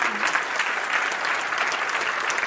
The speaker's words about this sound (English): I'm going to wait while you all clap your hands. How's that?